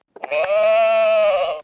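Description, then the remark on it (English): A single drawn-out sheep bleat from an old See and Say pull-string talking toy, shaped like a circle with a spinning plastic arrow, loud, lasting about a second and a half with a buzzy, steady tone and no other sounds around it. “You pull the string, the arrow spins, then stops on maybe a sheep, for example. The sheep says...”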